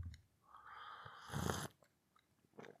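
Someone takes a long, noisy slurp of hot orange-flavoured tea (Twinings St. Clements) that swells louder before cutting off, followed after a short pause by a brief second sip. No one speaks.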